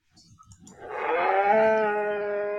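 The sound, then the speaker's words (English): A bowhead whale call rises from low rumbling grunts into a sustained, tonal moan with rich harmonics, loud and drawn out for a couple of seconds, sounding oddly like a lowing cow. “Was it A, a blue whale, B, a southern right whale, or C, a bowhead whale? C, a bowhead whale.”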